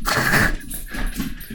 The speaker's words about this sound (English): There go the dogs.